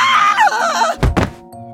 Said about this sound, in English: Wow, that's quite a scream you've got there. I thought one of the piglets was in here.